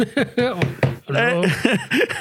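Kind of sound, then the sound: household object, knocking on a door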